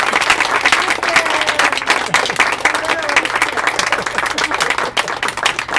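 Sustained applause from an audience, a dense crackle of many hands clapping at a steady, loud level for several seconds without letting up.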